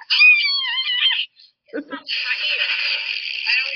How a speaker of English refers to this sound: She summoned my cat. The cat is upset. The cat is like, damn, Haggis, bitch, Haggis. Haggis, enough is enough.